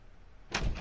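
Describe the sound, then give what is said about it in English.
The front door of a house opens with a single heavy clunk and rattle of the latch, fairly loud, following a moment of quiet. “It's my house, and I'll answer my own front door.”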